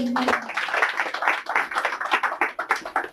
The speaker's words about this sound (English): Thank you. Big round of applause for her.